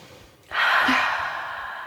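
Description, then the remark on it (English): After a short quiet moment, a single deep, airy breath, in through the nose and out through the mouth, starts abruptly and carries on steadily to the end, with no talking. “So, first things first, before we get into this, let's take a deep breath in through the nose and out through the mouth.”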